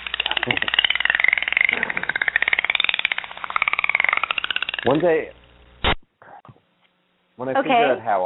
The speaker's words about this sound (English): I'm going to play Dolphin Sounds for 9 seconds. Hold on.